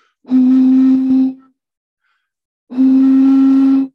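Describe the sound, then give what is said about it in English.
Someone blows across a bottle's mouth, making two long, steady, low hooting tones, each lasting about a second, breathy and loud, with a pause of silence between them. “remember when you used to do this to bottles?”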